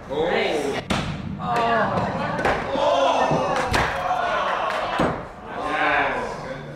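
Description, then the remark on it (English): Several sharp, heavy wooden thunks land at irregular intervals as axes are thrown in an axe-throwing contest, striking a wooden target board with an outer ring, an inner ring and a bullseye; each is a sudden crack over a steady background of voices talking and cheering. “I clutched my axe and threw first.”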